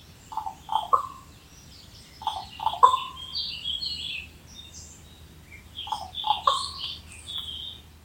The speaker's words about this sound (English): Here's a different type of call, made by a raven in Germany.